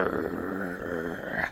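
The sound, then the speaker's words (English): A low, rumbling dog growl holds steady for about a second and a half, fairly loud, with no other sounds around it before it cuts off. “You're riding up on your homestead when Scout starts growling.”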